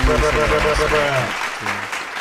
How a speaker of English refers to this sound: I'm gonna give everybody a clap for.